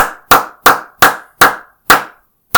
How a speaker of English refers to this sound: Seems like I'm the only one applauding.